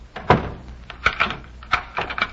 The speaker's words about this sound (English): Well, can't you wait until I close the door?